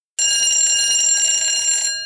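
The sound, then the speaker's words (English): A loud electric school bell rings continuously for nearly two seconds, a harsh metallic clanging with rapid striking, then stops abruptly with a brief ringing decay. “But for right now, let's roll in that school bell.”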